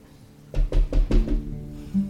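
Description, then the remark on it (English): Four quick, solid knocks on the door of Rachel's small homestead in an even rhythm, fairly loud, over a low steady hum in the background. “Haru takes the opportunity to walk to the door and finally knock.”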